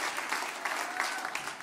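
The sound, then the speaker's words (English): An audience claps hands in praise to the Lord as people are being seated, a dense, steady wash of many overlapping claps from a large group, moderately loud and continuous without any talking. “Give the Lord a good hand clap of praise as you're being seated tonight.”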